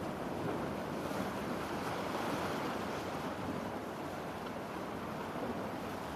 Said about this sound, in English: And as you get to the shore where the ocean meets the sand, you see little waves coming up and down, up and down.